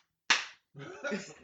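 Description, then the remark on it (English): A single sharp slap of a bare, wet hand cracks out with a bright smack that fades quickly, followed after a short pause by people's voices. “So, I'm talking about slapping him on the ass, like bare hand, like wet hand on the ass.”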